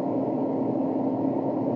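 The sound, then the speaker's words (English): A steady, low mechanical drone hums continuously, like a car engine idling with its air conditioning blowing, even in level with no voices. “Sorry, my car is on. I got my AC on.”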